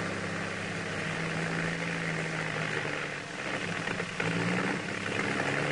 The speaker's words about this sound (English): Fear rode beside her as the 50-horsepower engine puttered through the enveloping mist.